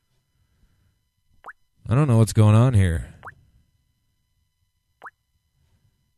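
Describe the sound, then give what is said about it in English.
Three separate water drips plop at slow, uneven intervals, each short and bright, with a person speaking briefly between the first two drops. “I don't like that dripping sound.”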